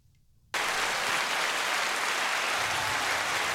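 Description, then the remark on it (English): After a brief quiet moment, a sudden burst of dense applause starts and holds steady, a loud, even wash of many clapping hands with no voices. “Is that applause or is it rain?”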